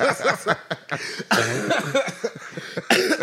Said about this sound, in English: Y'all gonna make me get this cough back for no reason.